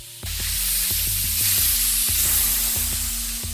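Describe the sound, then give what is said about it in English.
A ship's hatch decompresses as it presses open, with a sudden loud hiss that starts abruptly and holds steady to the end, while low, rhythmic mechanical pulses throb underneath. “You hear a hiss of decompression.”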